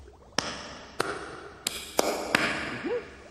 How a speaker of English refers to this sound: Now, the magic clap.